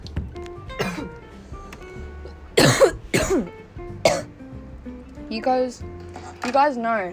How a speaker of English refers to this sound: You guys should know by now that I have to cough up a lung every time. Been smoking for nearly 2 fucking years straight. It gets to your lungs. It really does.